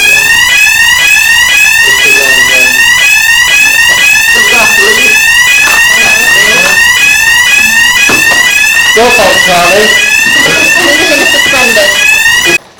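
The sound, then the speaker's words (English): A loud fire alarm goes off during a council meeting, forcing it to be suspended, blaring continuously with rapid, repeating high-pitched electronic pulses for the whole stretch, while indistinct voices murmur faintly underneath. “Sorry about that. The alarm went off, so we had to suspend the meeting.”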